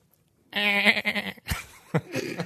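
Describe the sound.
A loud, quavering bleat from a goat with dynamite in its mouth, a Big Thunder Mountain Railroad sound used to mark a Disneyland point, rings out for nearly a second, followed by a couple of abrupt, noisy bursts and rougher trailing sounds.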